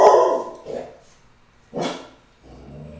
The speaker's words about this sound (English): That's Jax barking at probably someone walking by. Definitely someone walking by. The same guy who walks by every day. Jax has got to keep the home front safe, though.